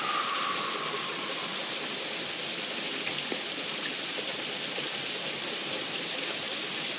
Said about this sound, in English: Just listening to the sound of the creek behind me and whatever other sounds are in the room or the space that you are in.